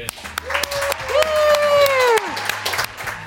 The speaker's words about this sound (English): Welcome to The Switch in our brand new studio. Isn't that worth an applause?